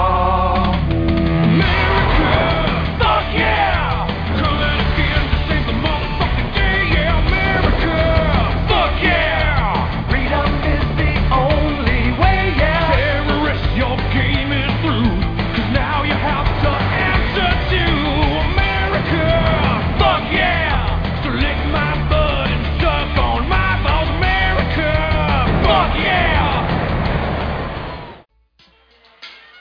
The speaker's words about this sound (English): Let's go to some music while we're talking, and then we'll be right back.